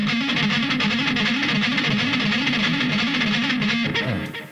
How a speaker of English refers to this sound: He's muting, so he's got so much distortion.